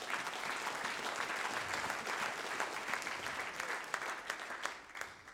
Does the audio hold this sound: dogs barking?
no